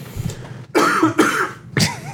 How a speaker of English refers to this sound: Every time you cough, I think you should hit a clip.